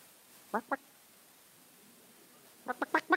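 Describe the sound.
A voice imitates a chicken clucking: two short clucks, a pause of nearly two seconds, then four quicker clucks in a row, moderately loud over a quiet background.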